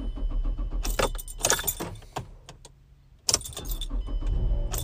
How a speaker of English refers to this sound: That was terrible. I was a little scared. My car almost didn't start. And this car's not even that old to be doing that.